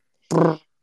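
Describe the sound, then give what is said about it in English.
A single short, buzzy fart-like blast, fairly loud, lasting about a third of a second before cutting off into silence. It is a mouth-made raspberry meant as a drum roll but sounding like a fart. “Was that a drum roll or a fart? It sounded like a fart.”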